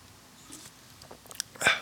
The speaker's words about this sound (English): It's a sip of 3D.